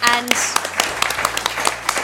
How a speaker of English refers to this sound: And if you'll join me again in applause for the biggest thank you